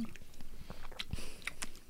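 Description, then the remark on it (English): Wet mouth sounds of someone sipping water from a bottle bought at IKEA and swallowing, with small gulps and lip smacks over a couple of seconds, no talking. “Hold on, I want to taste this sunscreen water.”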